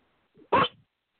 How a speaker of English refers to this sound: Sorry about that. My dog barked serious, in the background. I thought it was a cockfight.